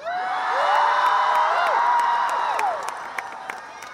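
A large outdoor crowd in Battery Park, New York City, roars and cheers loudly for Greta as she takes the stage, many voices shouting and whooping together with scattered claps, the din holding steady before easing slightly toward the end.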